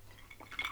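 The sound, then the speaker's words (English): A brief, faint glassy clink with a couple of thin, high ringing tones that fade quickly over a low steady hum, with no one talking; a glass of banana liqueur with four ice cubes, just inside a balcony in Tenerife. “I've got myself a glass of...”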